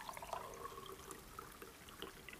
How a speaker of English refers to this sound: Hi. Could I just get some more hot water for my tea? Yes, absolutely.